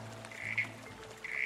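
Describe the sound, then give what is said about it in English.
A small corroboree frog gives two short, buzzy squelching calls about a second apart, calling back in response to a person's call, fairly faint, over a low steady background hum. “it's really difficult to see a small corroboree frog, but they happen to have this feature of liking to call back”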